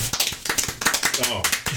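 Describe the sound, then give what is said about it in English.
A group of people clapping together in a quick, uneven burst of applause, fairly loud, with voices mixed in underneath. “All right, let's all clap.”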